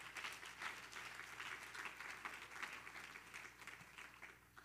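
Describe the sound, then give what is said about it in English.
An audience at a Wednesday night Bible study claps their hands to praise the Lord as the pastor comes up, a sustained, dense, steady crackling wash of many hands that stays loud throughout and eases off slightly at the end. “So let's clap our hands and praise the Lord one more time as Pastor comes.”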